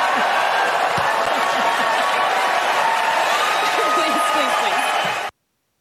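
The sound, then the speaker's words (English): A large audience bursts into loud, sustained applause mixed with cheering and crowd voices, a dense roar lasting about five seconds before cutting off abruptly. “To wild applause.”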